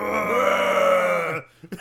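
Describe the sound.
A person imitates the Bigfoot roar from a movie: one sustained, rough, guttural vocal bellow lasting over a second, loud and steady, then cutting off abruptly followed by a brief faint breath.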